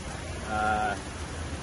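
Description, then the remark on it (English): Steady rain hisses evenly over a rainforest in La Fortuna, Costa Rica, a soft continuous wash of noise. Midway, a brief harmonic tone swells for about half a second and fades back into the patter. “Hey everybody, … here with Lead 38, coming to you live from a rainy La Fortuna, Costa Rica.”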